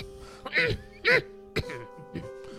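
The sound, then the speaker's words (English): A handful of raspy, throaty coughs from Yoda: two loud hacking bursts, then a sharp short one and a softer final cough, over a faint steady hum. “Yoda coughs more and instantly gets Leia's attention back.”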